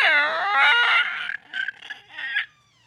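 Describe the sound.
A person imitates a pterodactyl with a shrill, wavering screech. It starts as one long loud cry, then breaks into several shorter squawks that trail off, and no one speaks.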